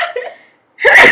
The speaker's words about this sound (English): Hold on, I have to sneeze.